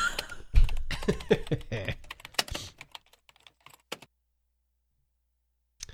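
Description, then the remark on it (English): Rapid clicking of keys being typed on a computer keyboard, fairly loud, with a dense burst for the first few seconds, then a few scattered keystrokes trailing off into quiet. “That was the actual keyboard.”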